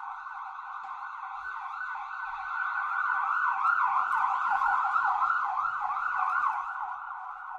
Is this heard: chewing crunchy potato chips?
no